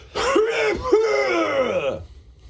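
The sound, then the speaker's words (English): A gross, phlegmy cough sound effect played from a soundboard cough button: two quick hacking bursts roll into a drawn-out, throaty rasp, loud, with no talking over it. “our cough button is just a soundboard of a very gross, like, choleric.”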